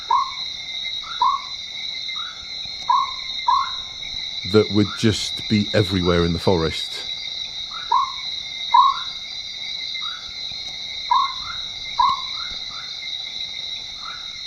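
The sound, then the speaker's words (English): Short, bright chirps of a mountain chicken frog, sounding like a phone ringing, repeat steadily about once a second over a constant high-pitched insect drone, with a man briefly talking partway through. “It was a very distinctive chirp.”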